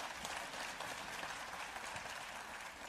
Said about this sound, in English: We are Pathway Church, located in Burleson, Texas. We worship together, we serve together, and we grow together. Yes, can you please give God a round of applause for what just happened through the band?